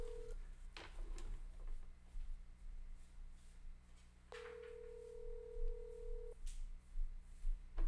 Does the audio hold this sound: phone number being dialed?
yes